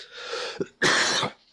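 A person coughs twice: a short raspy burst followed by a louder, harsher cough lasting about half a second, with no speech around it.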